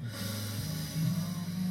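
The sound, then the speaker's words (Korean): A voice imitates heavy, huffing breaths through the nose: a continuous low, rough snorting sound held for a couple of seconds, with no talking. “이러고 약간 계속 숨소리.”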